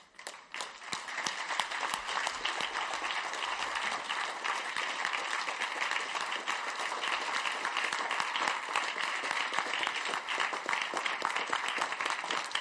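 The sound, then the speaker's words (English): A crowd claps steadily for over twelve seconds, a dense, even wash of many hands applauding at a constant loudness with no voices standing out. “Thank you for your nice clapping.”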